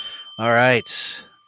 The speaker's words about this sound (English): Sleigh bells. Yeah, there you go. There it is, the sleigh bells.